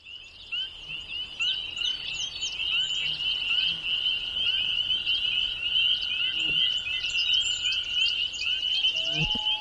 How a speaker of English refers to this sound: We leave you this week on Echo Pond. Ruth Happel recorded this wildlife scene in the Adirondack Mountains of New York, featuring the enchanting call of the loon.